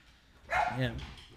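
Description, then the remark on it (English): A dog gives a single short, moderately loud bark, ending in a brief whiny tail, with quiet room tone before and after. “We should have surround cameras that get the dogs on. You can see how annoying it is in person.”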